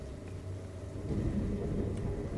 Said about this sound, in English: Maybe the thunder is like drowning you out.